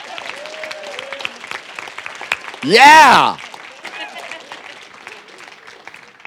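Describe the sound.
An audience claps steadily in a dense, crackling applause for a man standing up to show his band shirt, swelling briefly midway as someone lets out a loud, rising cheer, then settling back into continued clapping with a few voices underneath.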